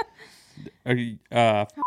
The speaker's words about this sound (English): We can block it out. Or we can blurp it out. What's the word? Beep it out.